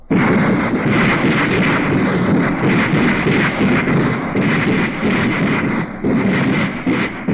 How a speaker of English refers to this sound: Then the president, the chief of staff, and all the reporters were urged to hold their ears for the new anti-tank rockets. Right, hold your ears on these weapons.